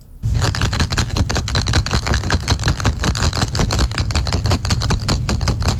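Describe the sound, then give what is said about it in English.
Golf balls rattle and clack together as they are shaken in a container, a dense, rapid clattering that keeps up steadily and loudly for several seconds. “It is golf balls being shook in a container.”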